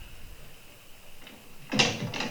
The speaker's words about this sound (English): Can you close the closet door? Yeah, close that shit. Who can sleep with the closet door open? To be fair, it was open when she tucked him in the first time.